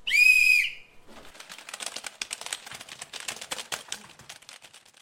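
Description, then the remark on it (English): A single sharp, loud whistle blast lasting about half a second, followed by a rapid, busy clatter of many keyboards as job applicants begin typing at their computers, continuing steadily with no talking. “The rest of you, turn to your computers and begin typing when I blow the whistle.”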